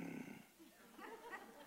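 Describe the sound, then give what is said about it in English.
A man imitates a dog growling over its food: a low, rough, guttural rumble that starts louder, then trails into grumbling, snorting noises, fairly quiet, with no other talk. “Growl at me, I kill you.”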